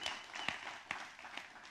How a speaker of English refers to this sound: Come on, somebody clap for that. Yeah. Woo!